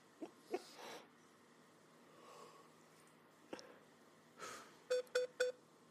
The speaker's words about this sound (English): What is that beeping sound? On hold.